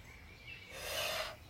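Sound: yawning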